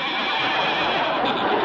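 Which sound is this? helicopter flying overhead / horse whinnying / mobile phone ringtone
horse whinnying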